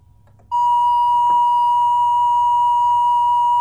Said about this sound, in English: Let me get that triangle wave again.